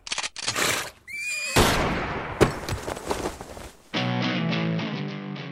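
horse neighing

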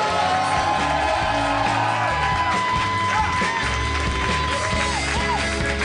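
audience applause and cheering

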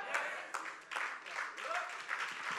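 audience clapping

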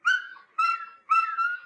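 dog whimpering

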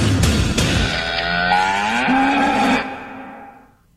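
cow mooing

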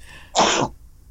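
sneeze

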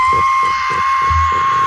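man screaming

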